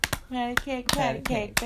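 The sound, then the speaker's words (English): Sharp hand claps in a patty-cake game, about six quick smacks in an uneven rhythm, with a voice chanting or singing between them. “Listen, we're playing patty cake.”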